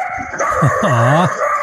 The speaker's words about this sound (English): No, dogs are see, there's my one of my dogs saying hello to your dog, so we're good.